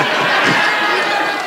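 A crowd cheers loudly in agreement with a remark about Canberra for about a second and a half, a dense, steady roar of many voices with no single speaker standing out.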